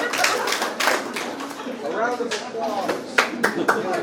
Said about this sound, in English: If you can hear the sound of my voice, clap three times. If you can hear the sound of my voice, clap four times.